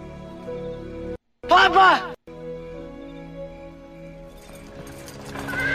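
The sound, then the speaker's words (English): A Victorian England-style horse-drawn carriage clip-clops by near a Kensington Gardens sign with a steady hoof rhythm, a loud whinny-like burst near the start, all over a continuous tonal musical background. “Yeah, so we already get a little bit of a Victorian England Mr. Toad horse and carriage. Drove by.”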